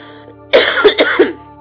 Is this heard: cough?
yes